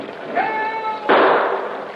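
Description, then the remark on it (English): A single loud gunshot, fired from a boat at the end of a dock, bursts out sharply and fades in a rolling tail after a thin, steady, high whistle-like tone has hung in the air for about a second. “Shot come from boat at end of dock, perhaps.”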